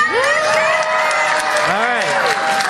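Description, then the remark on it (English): A crowd cheers loudly and continuously, many voices shouting together in long, rising and swooping calls that blend into a dense roar for a few seconds, cheering for the Pokémon Sylveon in a vote against Blaziken. “We didn't let them cheer for Blaziken, though.”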